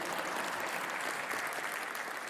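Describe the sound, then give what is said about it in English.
An audience applauds steadily, a dense, even wash of many hands clapping at once with no pauses, holding a constant moderate loudness throughout. “You can clap, she deserves that.”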